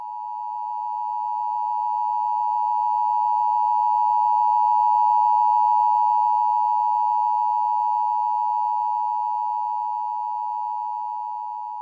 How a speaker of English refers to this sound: Let's go ahead and play that alarm just as we think and pray.